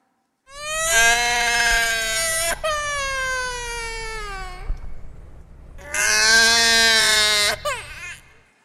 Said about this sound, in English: That is my baby, by the way. The sound of the baby's cry stimulates the woman's body to produce milk.